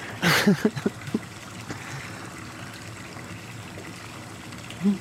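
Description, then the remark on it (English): Water trickles steadily into a canoe for several seconds, opening with a brief louder splashy burst and a few quick knocks, then a soft bump near the end. “Use these maxi pads as to soak up the water.”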